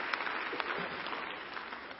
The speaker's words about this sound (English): Can we give those men and women a clap of hands? All right.